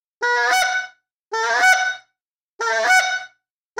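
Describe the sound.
Three loud, evenly spaced basic honks from a handheld goose call, each a raspy, nasal blast under a second long with brief silences between, with no talking.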